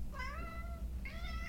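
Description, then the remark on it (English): Two cats, Mr. Ding Dong and Mr. Marchand, meow twice in quick succession in the morning before breakfast, two drawn-out, mid-pitched calls, the second rising slightly, over a steady low rumble with no talking. “They're leading me into the basement, which makes me think that they think I don't know that they've already been fed.”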